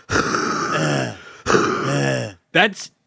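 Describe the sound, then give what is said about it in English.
A sick person makes a few rough, guttural coughing and throat-clearing sounds, fairly loud, in two long rasping bursts followed by a short sharp one. “It's terrifying because you're coughing, and then this is me.”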